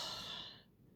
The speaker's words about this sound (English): 8, breathing deeply through your nose and out through your mouth.